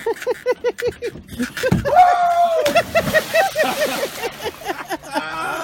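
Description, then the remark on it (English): A sports fan celebrating the Blues winning the title leaps into Lac Seul, water around 55 degrees, with one heavy splash, followed by water sloshing, while several people talk and shout excitedly around it. “The Blues ever won the title, he'd go jump in a lake.”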